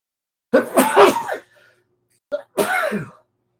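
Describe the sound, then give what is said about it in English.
Two loud human sneezes from someone just about over a cold, each a sharp burst with a breathy intake, separated by a short pause with a faint sniff before the second one. No talking. “You know, I didn't sneeze all day, and I think I feel one coming on.”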